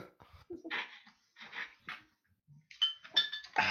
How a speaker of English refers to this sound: I hear clinking of glasses.